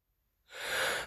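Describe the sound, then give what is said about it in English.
After a moment of silence, a single loud, breathy sneeze bursts out and trails off in a rush of air. No one speaks. “I had to sneeze.”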